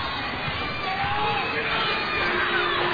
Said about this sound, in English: You can hear the boo birds at the multi. As I don't know where that foul was, to be very honest. And our crowd's normally pretty reserved, and they are on the officials about this one.